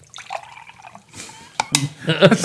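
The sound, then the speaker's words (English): A person vocally imitates a sputtering, ripping fart followed by gurgling, splashing water-pouring noises, fairly loud, with sharp bursts building toward the end. “Like I said, it sounded like you're ripping your pants, ripping your ass. And pouring a bunch of water.”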